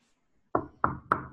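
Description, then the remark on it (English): Three firm knocks on a door by New York police detectives, evenly spaced about a quarter second apart, loud against an otherwise quiet background with no talking. “I'm going to knock on the door first.”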